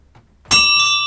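A ship's bell clangs loudly after a moment of quiet, struck twice in quick succession, its bright metallic tone ringing on and sustaining without fading much.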